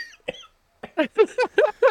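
A rapid run of harsh, throaty coughs, about half a dozen in quick succession after a couple of isolated ones, close and fairly loud with no talking.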